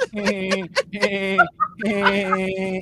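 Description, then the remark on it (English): In a 9-second phone message, a voice imitates a woodpecker's laughing call as Peter Griffin would laugh: a run of rapid, throaty, cackling bursts, a short pause, then another longer stuttering cackle, fairly loud. “Oh, if Peter Griffin were a woodpecker, he would laugh like this.”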